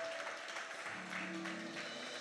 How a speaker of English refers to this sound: Can we give God a hand clap of praise this morning?